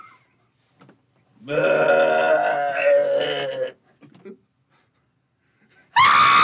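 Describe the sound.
A person vocally imitates the noise of someone aging 20 years and dying: a drawn-out, strained scream lasting about two seconds, wavering and groaning, followed after a quiet pause by another short, loud shriek.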